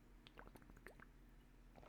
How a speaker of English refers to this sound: I'm going to take a sip of water because that was heavy.